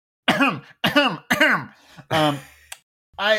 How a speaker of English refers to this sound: I'm going to give you inspiration for clearing your throat as a shy guy.